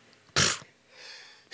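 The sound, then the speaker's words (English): A single sharp, explosive sneeze, followed by a soft breathy exhale and the start of another burst of noise at the very end. “Bless you.”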